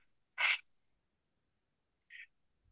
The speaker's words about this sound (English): Like he used to shadow box and jump up and down, warm up at the curtain, yep, breathing as deep as he could. Like he was getting ready for a match. You can hear him.